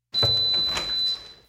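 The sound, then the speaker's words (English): The door to a DNA lab swings open, a sustained rustling, scraping sound lasting just over a second, with a faint steady high-pitched tone ringing through it. No one speaks. “It's possible that a little bit of Christopher Columbus is on the other side of this door.”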